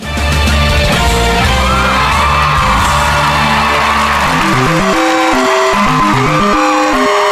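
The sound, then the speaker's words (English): A voice loudly imitates an air horn: a long, blaring, buzzy tone, then a run of rapid short blasts that jump up and down in pitch in a rhythmic pattern. “That was my version of the that was good. The air horn.”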